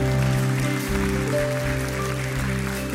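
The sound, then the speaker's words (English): A church audience claps steadily for a few seconds during a sermon, a dense wash of applause over sustained organ-like keyboard chords that hold underneath throughout. “Yes, clap.”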